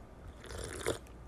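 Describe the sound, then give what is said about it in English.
A brief sip from a cup of tea, a soft slurping mouth sound peaking near the end of a quiet second, with no talking. “I like that sip of tea there.”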